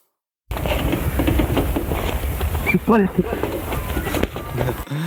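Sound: duck mimicking human speech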